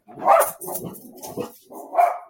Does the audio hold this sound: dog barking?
yes